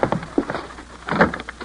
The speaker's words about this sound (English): Will, quickly, open the door.